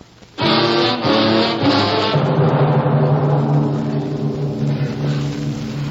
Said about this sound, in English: The motor hums in a vast silence.